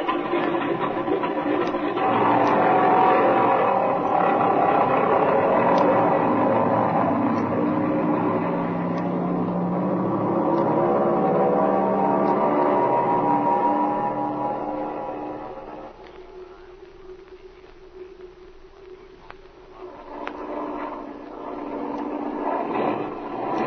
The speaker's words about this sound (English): This engine's missing, Speed. The tachometer keeps jumping back and forth. Yeah, I hear it, Jim, and I can't understand it. What do you suppose the trouble, Flash? Darned if I know. It might be almost anything. It's getting worse, Speed.